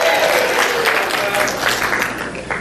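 A room full of people claps steadily for a few seconds, a dense, continuous wash of applause that stays fairly loud throughout with a murmur of crowd noise underneath.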